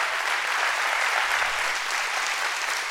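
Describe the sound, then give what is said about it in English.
A crowd claps steadily for Jesus during a sermon, a dense wash of many hands applauding at once, even and sustained from start to finish with no voices standing out. “Come on, clap your hands for him, not me.”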